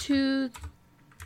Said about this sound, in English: I have my keyboard with me. My big one. We can have clicky noises.